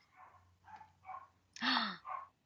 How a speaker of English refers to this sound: He's barking. That's why they're barking. They are the barkiest dogs ever. You'll never get attacked. Yeah, because they think that people just like walking by our house are like threatening.